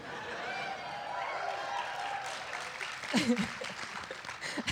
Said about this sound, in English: I'll clap for that too.